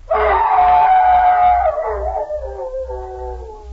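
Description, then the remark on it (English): A man imitates a hound's howl for a Jell-O program comedy play of The Hound of the Baskervilles: one long, loud baying note that holds steady and then slides downward in pitch and fades slightly, with no talking around it. “I think you ought to try that howl just once more.”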